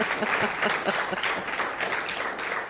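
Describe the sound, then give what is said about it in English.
An audience applauds the panelists steadily, a dense wash of many hands clapping at an even loudness for a few seconds without any voices breaking through. “Let's give them a round for getting through the applause.”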